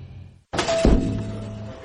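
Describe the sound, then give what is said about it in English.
A dull, heavy thunk as a man's head bumps hard against the glass window of a C Spire store, with a brief rattling resonance, fairly loud after a moment of quiet. “I'm Jerry from C Spire, and you're banging your head against our store window.”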